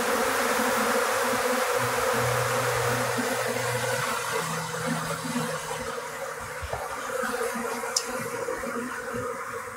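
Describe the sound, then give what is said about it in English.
A dense swarm of orange glowing fireflies buzzes steadily and loudly throughout, a continuous droning hum with overlapping wingbeat tones and no voices. “Right as you hear splitting and squishing and buzzing.”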